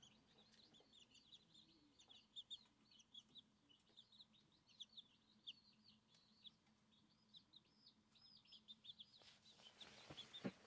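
Chickens cluck and chirp in a steady, busy stream of short calls, soft, with a low hum underneath and a brief louder burst near the end.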